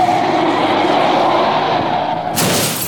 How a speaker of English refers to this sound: Unfortunately, a car speeding down the highway smashed into their car, which then flipped it over right into the middle of the freeway.